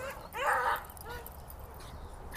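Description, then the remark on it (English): A dog lets out a loud, strained bark, then trails into a few softer, high-pitched whimpers and yips over a faint background hiss. “Oh, this dog.”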